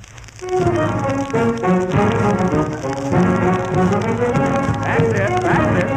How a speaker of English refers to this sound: I'd like to hear you play the violin, cornet, jew's harp, and bass drum while marching out of the studio in perfect rhythm.